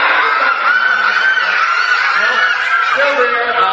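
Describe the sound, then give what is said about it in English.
At a magic show, several audience members squawk and cluck together, imitating chickens in a loud, continuous jumble of high, nasal voices that sometimes break into snickering laughter. “How about chicken noises? Everyone make chicken noises.”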